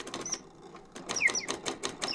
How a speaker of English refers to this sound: This is an automata bird, and it dates from the 19th century. It was made in Paris. And what amazes me is the fact that you've got a real little exotic bird in there, a little red bird with beautiful plumage, sitting on a branch